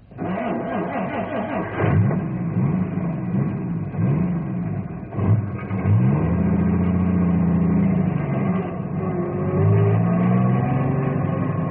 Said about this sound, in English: I'm moving the truck, but not because I think I should.